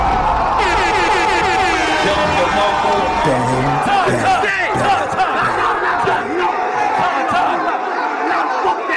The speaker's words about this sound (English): Yeah, he was on it, man. He had everybody in that building just cheering.